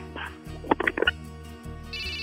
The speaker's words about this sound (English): And then half an hour later, my phone just starts ringing off the hook.